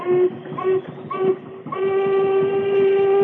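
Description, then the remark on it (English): A loud steam whistle on a police launch sounds a signal toward a stern-wheeler: three short hoots in quick succession, then one long sustained blast that holds steady to the end, with a low rumbling engine beneath. “I'll try another signal on the whistle.”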